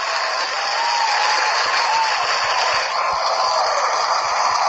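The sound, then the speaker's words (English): A crowd claps and cheers for Birkenstocks shoes in a steady, dense wash of applause that holds at a fairly even loudness for several seconds, with no individual voices standing out. “I don't know why I'm cheering Birkenstocks.”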